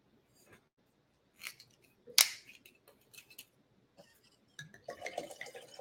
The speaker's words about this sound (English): Like, remember myself that before I pour this fifth bottle of wine.